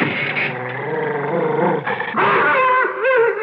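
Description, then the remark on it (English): A dog, Kip, growls loudly and without pause in protest at being brought inside through a door, a rough, roaring snarl that rises into strained, whining pitches near the end, with no talking over it. “He's protesting rather vehemently, sir.”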